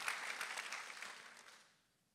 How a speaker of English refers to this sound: You ought to clap a little bit louder if you're grateful.